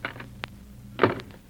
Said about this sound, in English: Now, you go out the front door, come in here again